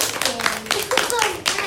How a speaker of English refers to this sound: Well, you all did a really good job today. You should give yourself a clap. You did such a good job practicing yoga.